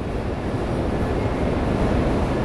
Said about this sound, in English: Under the Dumbo Archway in Brooklyn, you can hear the familiar sounds of New York City. Angry drivers in traffic. Tourists taking photos. the roar of the M train right above.